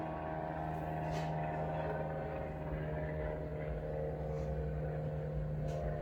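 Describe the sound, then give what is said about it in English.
An airplane drones steadily for the whole stretch, a loud, low engine rumble with a humming tonal layer and no voices over it. “Yeah, I mean, like, there's an airplane coming through now.”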